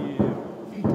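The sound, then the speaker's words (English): Incoming Russian artillery fire booming nearby as heavy munitions are fired into a dense forest near a Ukrainian camp in the east: two deep, rumbling blasts about half a second apart, each a loud low thud that swells out of a steady murky background. “Incoming fire booms steadily nearby.”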